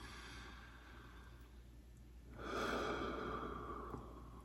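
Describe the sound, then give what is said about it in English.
A slow, steady breath during a breath-focused meditation: a soft, airy inhale followed by a longer, louder whooshing exhale that gradually fades. No one speaks. “It's just focusing on our breath, the inhale and the exhale.”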